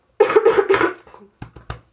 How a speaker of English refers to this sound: God's making me cough, so I have to calm the fuck down.